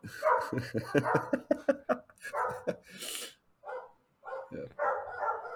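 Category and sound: animal, dogs barking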